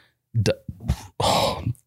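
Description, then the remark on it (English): A loud burp-like vocal sound in several short, gurgly bursts, the last one long and raspy, apparently a person imitating a belch with their voice. “Dry duck burp.”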